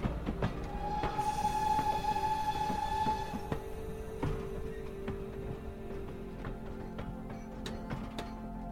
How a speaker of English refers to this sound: This is a steam train pulling into the station.